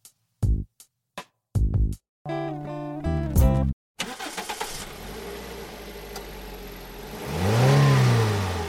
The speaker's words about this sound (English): That, of course, is the sound of an internal combustion engine. Now multiply that by roughly 35 million, and that's the number we have on the roads here in Canada.